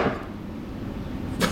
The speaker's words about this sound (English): What did you just do? I made water come out of my nose.